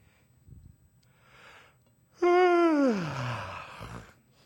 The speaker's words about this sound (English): It's contagious. How many of you yawned after I yawned?